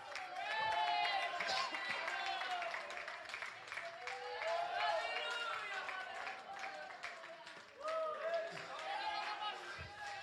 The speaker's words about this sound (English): Come on, clap your hands.